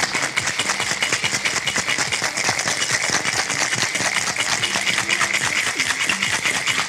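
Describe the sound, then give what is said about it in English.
Ice rattles hard inside a cocktail shaker holding vodka, lemon juice and Luxardo in a fast, steady rhythm of dense, bright clattering that stays loud and continuous for several seconds, with no talking over it. “And then you're gonna wanna shake that up real nice, real good.”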